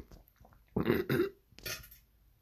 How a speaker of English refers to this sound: Ooh. Perfectly timed fart.